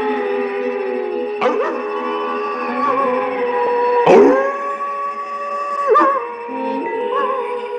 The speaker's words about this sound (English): Wolf's End Lodge. Like it even sounds like a wolf. That is a wolf, silly.